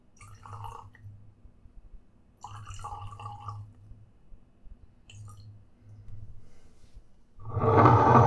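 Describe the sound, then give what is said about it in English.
Whiskey of about 62% alcohol (124 proof) from cask 54 glugs out of a small bottle in several short bursts of gurgling liquid, with no talking, ending in a louder, fuller rush of sound. “I'm going to pour a little bit now.”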